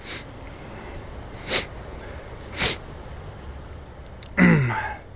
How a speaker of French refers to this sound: Bon, je renifle parce que j'ai frette, là. Je suis en train de geler.